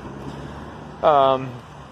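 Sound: street traffic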